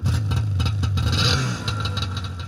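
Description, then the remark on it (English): A snowmobile engine runs loud, its throaty drone revving and wavering for a moment before settling into a lower, steady rumble with light mechanical clatter. “There was definitely this huge sense of freedom that I got riding the snowmobile.”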